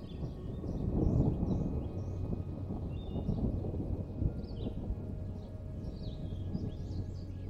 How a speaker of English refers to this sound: And just when you thought this place couldn't possibly get any more relaxing, you hear a gentle rumble of thunder off in the distance as a light afternoon rain shower makes its way towards the cabin.